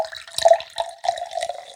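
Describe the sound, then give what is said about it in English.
Soda water is poured into a glass to top up a drink, a gurgling, bubbly splash with a hiss of fizz, coming in a few short surges over about two seconds. “So we'll top that with some soda.”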